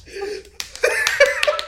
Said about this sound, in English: Slapping my fucking thigh. You like that, dude? I'm slapping my thigh. I'm going to slap your fucking thigh as hard as I can. It's getting raw.